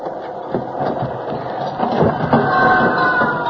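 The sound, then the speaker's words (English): A moving freight train rumbles and clatters steadily, with rhythmic knocking and a thin metallic squeal rising toward the end. No one speaks. “Let's get off while the train's still moving.”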